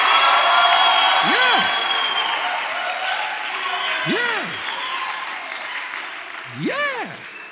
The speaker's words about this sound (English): If there's a winner here, clap your hands and shout to Jesus.